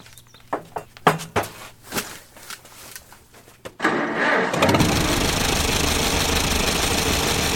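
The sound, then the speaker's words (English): A restored old tractor engine in a garage cranks with a few uneven, sputtering turns, then catches and settles into a loud, steady, rumbling run, with no one speaking. “It sounds just like an old tractor should, even when restored.”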